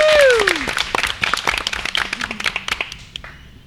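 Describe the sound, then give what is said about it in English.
A round of applause from a group for the people who aren't on the mic, with many overlapping claps in a dense, steady patter that thins out and fades near the end. A brief falling whoop rises above the clapping at the start. “Round of applause for the people that aren't on the mic.”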